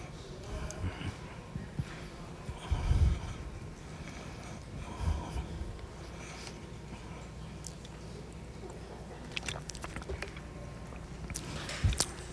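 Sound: chewing communion bread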